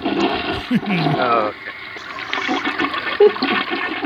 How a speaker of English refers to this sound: There it is. You'll have to flush that. Yeah. Yeah, flush it.